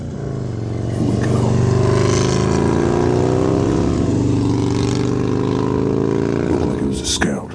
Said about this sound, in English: But then I heard the noise of a motor.